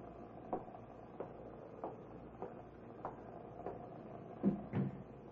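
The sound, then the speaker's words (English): A storeroom door opening or closing, heard as a steady series of soft clicks and creaks over a low hum, ending in two louder knocks near the end. It is fairly quiet, with no voices. “That's the door into the storeroom.”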